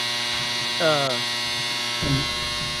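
household object, clothes dryer running

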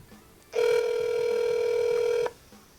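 signal or alarm, phone call ringing out

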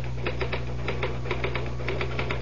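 tool, typing on a typewriter

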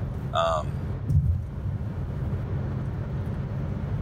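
vehicle, car interior road noise

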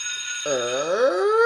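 household object, doorbell ringing

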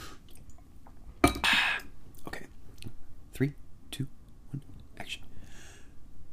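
food or drink, sipping water

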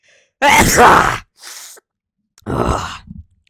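human body sound, sneeze

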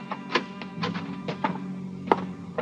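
household object, door being opened

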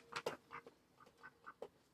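animal, duck quacking

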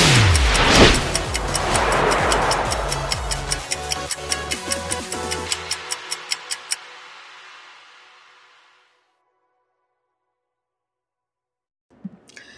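sound effect, clock ticking

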